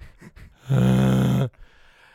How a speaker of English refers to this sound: I was mouth breathing on it.